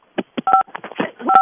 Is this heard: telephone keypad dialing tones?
yes